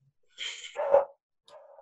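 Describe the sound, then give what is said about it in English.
A dog barks twice right outside the door, a sharp, strained bark followed by a softer, shorter one, sounding slightly muffled, with no talking. “It's okay, my dog's gonna start now. She's gonna be like, who is this?”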